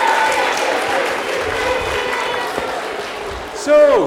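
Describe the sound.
A crowd applauds steadily, a dense wash of clapping filling the whole stretch at moderate loudness, with a brief voice rising over it near the end.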